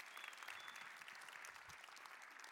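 Steady applause from an audience welcoming a woman who is about to speak fills the whole stretch, a dense wash of many hands clapping at once, fairly loud and continuous with no voices standing out.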